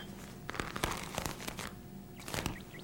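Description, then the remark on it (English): Crisp rustling of a morning newspaper being handled, with a series of sharp crinkling bursts at an uneven rhythm and no voices. “You morning paper.”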